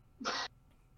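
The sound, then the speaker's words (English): A single quick sneeze, sharp and fairly loud, bursting out with a breathy hiss for a moment before it falls quiet again. No one speaks. “Bless you.”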